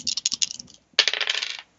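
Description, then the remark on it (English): Dice rolled for a physique plus wrestling check rattle and clatter across a hard surface in two bursts, a quick run of sharp clicks, a brief pause, then a longer tumbling roll that settles to silence. No one speaks. “Alright, roll physique plus wrestling again. Alright, same roll as before.”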